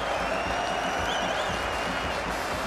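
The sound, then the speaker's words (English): A large cricket stadium crowd of England fans, all on their feet, applauds Zach Crawley reaching his century in the second Test, with the England dressing room also applauding. A dense wash of clapping with scattered cheers and whistles rising above it, sustained and loud throughout, with no one speaking. “You can hear the England fans. They're all on their feet saluting what has been a quite superb knock from young Zach Crawley.”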